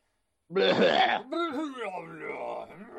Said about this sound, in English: Clearing my throat and barfing at the same time.